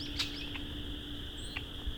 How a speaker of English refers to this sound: I was hoping more than this would be here. It's only about 5 red-winged blackbirds, maybe.